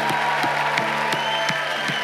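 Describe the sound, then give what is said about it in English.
A group claps in a steady, even rhythm, about three claps a second, cheering on students going back to school, over a constant wash of crowd noise with a faint sustained tone underneath. No clear cheering voices stand out. “If you're going back to first grade or third grade or 12th grade, come on, let's cheer on students going back to school.”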